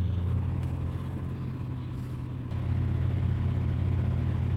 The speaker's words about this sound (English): Welcome to Microwave ASMR.